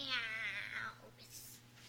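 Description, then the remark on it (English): A person mimics a cat with one drawn-out meow that slides downward in pitch over about a second. The voice is moderately loud, followed by faint breathy noise. “You want a mouse? Okay. Meow.”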